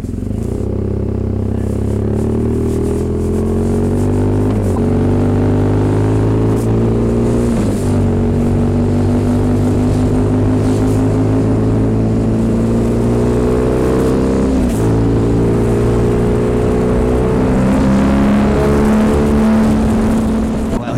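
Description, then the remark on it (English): A BMW motorcycle engine drones steadily with a passenger aboard, its pitch climbing through gear changes as it accelerates, with shifts about every few seconds and constant wind rush over the whole ride toward the town of Frelishburg. “Never been on a BMW motorcycle before.”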